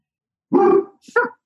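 A dog named Max barks twice, a longer full-voiced bark followed shortly by a sharper, shorter one, with silence around them and no one talking.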